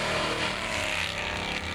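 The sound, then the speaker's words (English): A Camaro races around the bend of a road and drives past, its engine roaring loudly in a steady, high-revving rush of motor noise with no voices. “A couple minutes tops before literally out of nowhere, this car races around the bend of the road and drives past us.”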